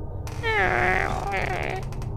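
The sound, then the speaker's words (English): A voice imitates the slow, drawn-out creak of a baby's room door opening, a wavering squeaky tone rising and bending for about a second and a half, fairly loud over a low background rumble. “the baby's room opens up.”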